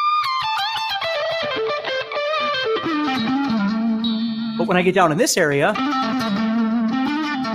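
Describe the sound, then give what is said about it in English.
A distorted electric blues guitar plays loud, sustained notes that step down from high to lower pitches, with bends and wobbling vibrato, while a man talks over the playing during a live blues guitar workshop. “Live Blues Guitar Workshop 5: Live Q&A Session”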